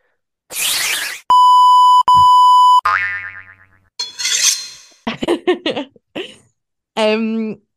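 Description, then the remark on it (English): A loud, steady censor bleep tone covering swearing runs for about a second and a half with a tiny break in the middle, surrounded by a burst of noise, a springy boing and short bits of voice. “Do you want to do one? I'll beep it out.”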